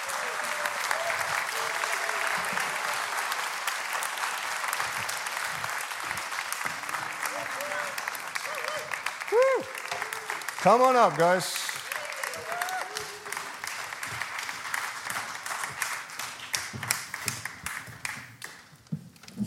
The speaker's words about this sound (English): would you come up on the stage and would you guys give them a huge round of applause?